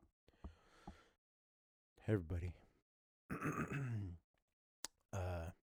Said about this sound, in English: I'm a little sick, a little congested. That's where that massive deep breathing is coming from. Also, I'm obese. So, you know, got a limited real estate in the airways.